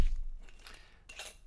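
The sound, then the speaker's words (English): A bottle of 2018 California Candy Dry Rosé wine being opened: a couple of soft, brief crackling and scraping bursts with a faint glassy clink, quiet overall and with no one speaking. “We got a new wine. It's called California Candy Dry Rosé. It is a 2018 wine, so a year old. It's gonna crack it open.”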